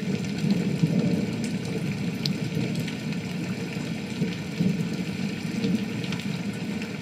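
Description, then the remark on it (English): Rain patters steadily on a surface, a dense, even hiss with a low rumbling undertone and scattered sharper ticks of drops throughout, moderately loud with no voices. “Oh no, just like in the shed on the island, it started to rain.”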